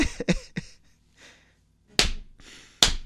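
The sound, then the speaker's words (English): A hand slaps a thigh several times: three quick smacks in a burst, then a pause, then two louder, sharper slaps spaced apart, with no talking. “Thigh slap.”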